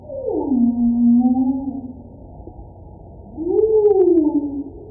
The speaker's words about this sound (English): I think the most common sounds that we are hearing are from humpback whales.